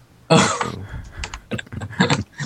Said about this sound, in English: Well, Hunk Club is typing away crazy.